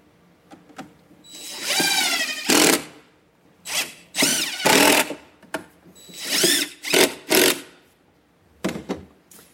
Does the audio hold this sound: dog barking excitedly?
no